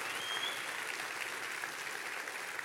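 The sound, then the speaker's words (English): A church audience claps their hands during a sermon in sustained, dense applause, a steady wash of many overlapping claps with no pauses or individual rhythm standing out. “Clap your hands real big and rejoice in that.”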